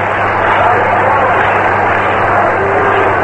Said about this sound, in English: Manager Mel Ott of the New York Giants is coming up. He's going to pinch hit for Walter. Ott is getting a great hand from the crowd. Listen.